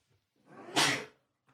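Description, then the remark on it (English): A single sneeze with a short voiced wind-up that bursts into a sharp, breathy explosion, fading quickly into quiet. “Bless you.”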